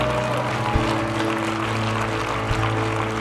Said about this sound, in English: Would you stand to your feet? And I want you to give the Lord the greatest round of applause that you've given Him all morning.